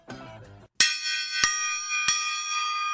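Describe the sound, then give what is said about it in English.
A bright morning bell is struck three times in slow succession, each strike blooming into a long, shimmering ring that keeps reverberating between hits, after a brief tonal sound. “It's the morning bell. Oh, I like the way it reverberated.”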